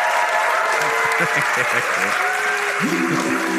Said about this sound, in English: Please, a round of applause for my brilliant guest, Joe. Thank you.